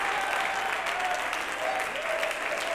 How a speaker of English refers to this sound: Can we clap our hands and give him praise right now?